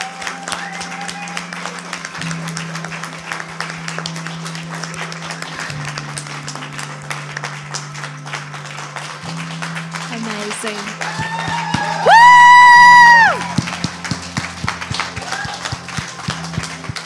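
A standing crowd applauds steadily for over fifteen seconds in appreciation, honouring two pastors at a church gathering: a dense wash of clapping over a low sustained musical drone, with a loud rising whoop or cheer bursting out briefly near the end.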